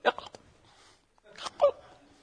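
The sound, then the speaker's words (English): A voice imitates hiccups: two short clusters of sharp, gulping vocal bursts separated by a brief pause, moderately loud, with no ordinary speech. “Then I had a hiccup all for two nights straight, all day. Hiccuping.”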